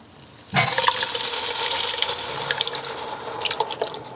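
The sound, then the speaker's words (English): After a brief quiet moment, a loud, steady sizzle bursts up as a big can of tomatoes is poured into a hot pot of alliums, hissing continuously and breaking into crackles and pops as it settles. “I'm going to hand it to you and just pour it right in there. It's going to make some good sounds and steam a little bit.”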